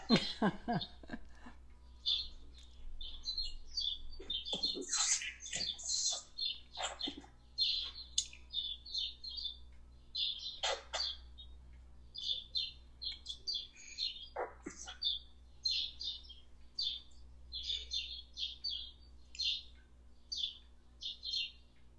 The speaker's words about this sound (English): Okay, you're hearing all the birds in our backyard.